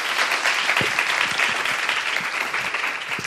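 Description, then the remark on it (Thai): An audience applauds steadily throughout, a dense wash of many hands clapping at a fairly even loudness with no voices standing out. “โอเคค่ะก็ ปรบมือให้ได้มั้ยครับ”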